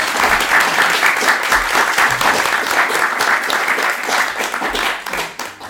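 A crowd applauds steadily, many hands clapping in a dense, continuous patter that stays loud throughout and begins tapering slightly near the end.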